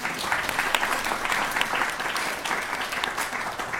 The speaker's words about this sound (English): So please give them a round of applause.